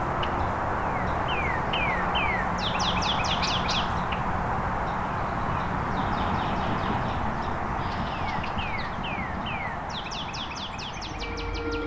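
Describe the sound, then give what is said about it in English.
A northern cardinal sings loud, clear series of rapid down-slurred whistles, repeating phrase after phrase over a steady rushing outdoor background with no talking. “There's a northern cardinal here, being a bit loud.”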